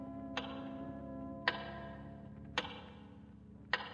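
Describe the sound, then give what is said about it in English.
A big clock with an electrically illuminated face ticks with four sharp, crisp clicks spaced about a second apart, over a steady low background hum. No one speaks. “And again you stare out the window at the big clock, its face now brilliant with electrical illumination.”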